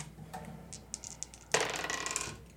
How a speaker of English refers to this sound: Oh, 16. Maybe I should start rolling. I should keep this dice.